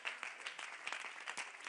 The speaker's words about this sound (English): You don't even know what you're clapping about. You don't even know what you're applauding, because you've never been through a trial.